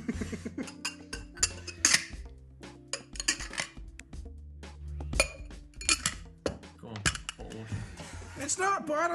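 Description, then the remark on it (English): A beer glass clinks and knocks repeatedly in quick, irregular bursts of bright, sharp taps, with low murmuring voices underneath. “That's a bottle. Is it a glass? Don't break my beer glass.”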